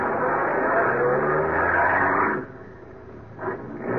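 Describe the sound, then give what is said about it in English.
A car engine roars loudly for a couple of seconds as the car drives off in pursuit of another car on an empty road late at night, then the noise drops away, with a brief surge of revving near the end. “He went past. I started after him.”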